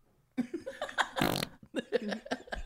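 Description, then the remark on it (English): A loud, brief fart sound bursts out, sandwiched between goofy voiced grunts and chuckling noises that run before and after it. “I'm just farting and coughing and sneezing and yelling into this.”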